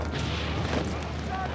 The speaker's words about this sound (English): 7:20 a.m. An incredible explosion echoes across the lines as chunks of earth fly into the heavens, and a 130-foot-wide crater opens under the German redoubt at Hawthorne Ridge. It's the work of the Royal Engineers 252nd Tunneling Company.